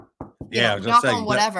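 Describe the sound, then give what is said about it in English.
Two quick, close knocks on a hard surface for luck, followed right away by someone talking. “Knock on whatever.”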